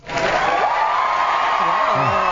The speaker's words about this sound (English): Wow. I get an applause on the radio.